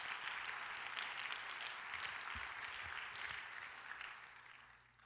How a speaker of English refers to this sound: Let's clap our hands and thank the Lord.